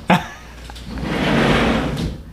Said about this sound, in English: I got to close the door. That's for certain. I was waiting for the sound police to catch that.